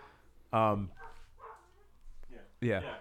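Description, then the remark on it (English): Two loud, sharp dog barks about two seconds apart, with quieter muffled voices or sounds in the gap between them. “She slid under the crack in the garage to silence the dogs.”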